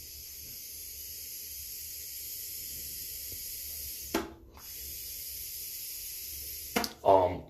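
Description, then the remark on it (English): A long, steady, airy hiss of someone exhaling vapor after a vape hit in a bathroom, broken by a brief pause before another exhale, ending with a short vocal sound. “So let me hit this vape and celebrate that, and then I'm going to get going, you guys.”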